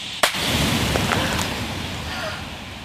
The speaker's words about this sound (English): So that noise of thousands of birds, the wing beats, that was that noise that I heard that one night, which first alerted me to this issue when I was out here at night and walking along the forest, and there was just that whir of wings.